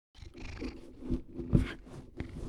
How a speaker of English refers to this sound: Has Sammy come to tell us something? Yeah, the podcast cat has arrived. You going to meow? No, typical.